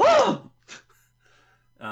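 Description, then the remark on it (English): A person imitates a fighter's effortful grunting: one loud, strained vocal grunt, then a few short, breathy pants trailing off. The sound is solo, with no talking. “I mean, you hear grunting and panting all the time in, like, tennis.”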